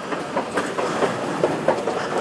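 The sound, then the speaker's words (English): A London Underground tube train rumbles steadily along the rails, a dense roar broken by regular clickety-clack beats from the wheels passing over track joints, fairly loud, with no voices. “But I saw complete joy in their experience on the tube train.”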